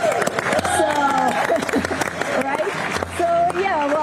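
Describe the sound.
The DART mission team clapping steadily for several seconds after their spacecraft crashed into the asteroid Dimorphos in the first planetary defense test, with excited shouts and cheering voices mixed in, lively throughout.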